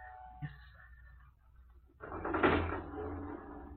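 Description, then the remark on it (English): A metal lift gate clatters shut and a passenger-operated elevator starts up to the first floor, a loud mechanical rumble and rattle that swells and keeps running steadily to the end, after a quieter humming lead-in. “We will work the lift ourselves.”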